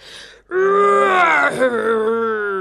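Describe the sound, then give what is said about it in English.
A human voice imitates the roar of the lion Bubes in a story: one loud, sustained, low bellow lasting about two seconds, with a rough groaning tone that wavers slightly before trailing off. “"Roar!" came the bellow.”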